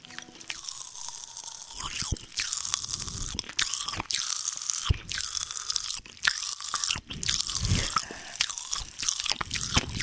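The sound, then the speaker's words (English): Wet chewing of a crunchy watermelon-flavored fizzy candy, activated by saliva, with repeated crackling bites and a steady sizzling fizz running underneath for about ten seconds, no talking. “Oh, I'm chewing it.”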